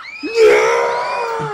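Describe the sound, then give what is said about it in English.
A crowd of onlookers in the streets screams in panic as fear gas reaches them: several high, sustained shrieks overlap and swell suddenly after a brief pause, staying loud for over a second with no clear speech. “But then, the fear toxin reaches the crowd as well.”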